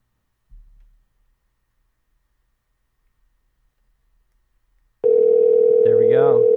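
telephone call ringing out

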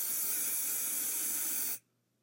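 hairspray being sprayed

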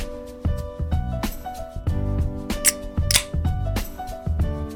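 drink can being opened

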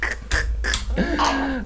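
sneeze

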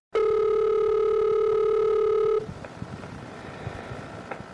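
telephone ringing tone

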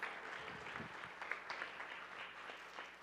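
audience round of applause

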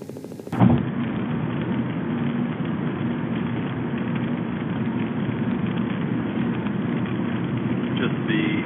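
car road noise

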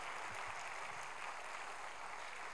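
audience clapping hands

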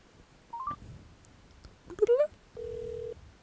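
phone number being dialed

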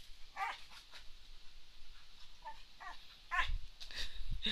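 dog vocalizing

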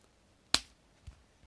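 slap

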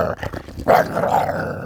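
dog growling

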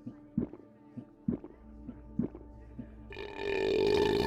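loud belch

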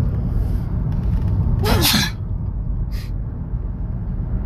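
sneeze

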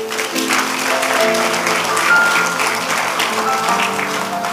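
audience clapping

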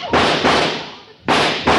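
gunshots

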